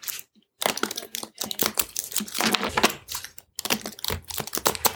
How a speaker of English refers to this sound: So if you hear some cards shuffling around, that's us just trying to get to the bottom of what happened to the Mary Celeste.